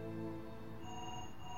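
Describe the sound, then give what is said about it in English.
A wall-mounted telephone rings in a steady, unbroken electronic trill, fairly loud, with no one speaking over it. “On the wall, the phone's ringing.”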